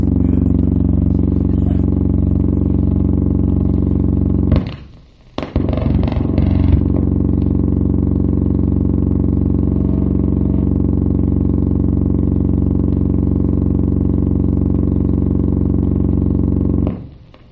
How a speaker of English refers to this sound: Sounds like a Harley.